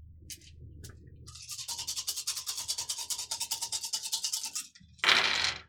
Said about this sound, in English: Roll 6 dice. Plus 1, 7 dice. If you want to roll the extra one, you do. It's an optional.